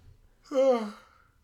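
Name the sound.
yawn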